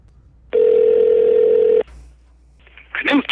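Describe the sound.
A telephone line rings with one loud, steady electronic tone lasting over a second, then a quiet hiss of line noise before a voice briefly answers near the end.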